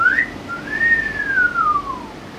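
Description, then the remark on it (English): A single catcall wolf whistle at a party: a quick rising chirp, then a long, smooth note that arcs up and glides back down, fairly soft and with no one talking. “As soon as Nox sees the two of them walking back in, they're going to whistle that cat call whistle.”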